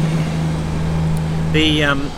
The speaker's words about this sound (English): Wait for this truck to move.